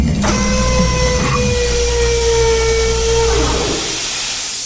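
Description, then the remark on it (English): A heavy mechanical chamber door slides open with a loud, steady hiss and a droning motor whine that holds for about three seconds, then dips in pitch and fades out. “Open the chamber door, Dr. Goodbody. Yes, Doctor. Opening the chamber door.”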